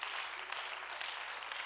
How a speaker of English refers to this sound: Oh, clap your hands and say, thank you, Jesus.